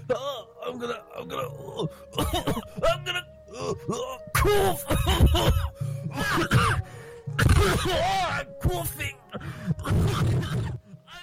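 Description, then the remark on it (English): A person coughs in several harsh bursts over about ten seconds, mixed with strained groaning and throat clearing, loud, with short pauses between fits. “I'm gonna cough.”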